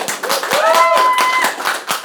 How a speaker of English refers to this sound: I'd like to have a round of applause for our guests,